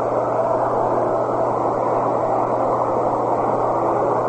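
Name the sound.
airplane taking off overhead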